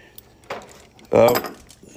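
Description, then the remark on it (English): A door is opened to let a dog in: a short metallic jangle and rattle, like a handle or latch being worked, swells into a loud clattering burst with a faint squeak, lasting about half a second. “Excuse me while I let our dog in here.”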